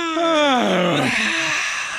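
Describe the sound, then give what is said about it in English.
A voice groans through a yawn, its pitch sliding steadily downward, then trails into a long, breathy, exasperated exhale that gradually fades out. “Somebody said when people yawn and then make that exasperating sound of the exhale.”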